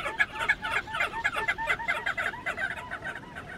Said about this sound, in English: Picture a flock of tens of thousands of crested auklets flying low across the wave tops, yipping like an army of chihuahuas while trailing a perfume of fresh citrus.